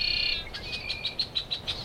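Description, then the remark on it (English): Baby red-winged blackbirds in a patch of grass beg while being fed by their mother, with a high, thin trill followed by a steady run of short, piping chirps, moderately faint, with no voices over them. “Hear the baby red-winged blackbirds down in the patch of grass there. They're begging and getting fed by mom.”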